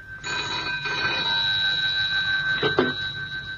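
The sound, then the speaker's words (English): A telephone bell by a bedside rings steadily and fairly loudly at night for a few seconds, a sustained metallic trill with a brief faint clatter near the end as the receiver is picked up. “I couldn't sleep, and so answered at once when the phone rang by my bedside.”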